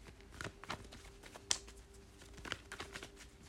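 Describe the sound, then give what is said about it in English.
A deck of cards being shuffled for a card reading, with soft irregular taps and flicks and one sharper snap midway, over a faint steady hum and no talking. “Let's shuffle the cards a little bit more.”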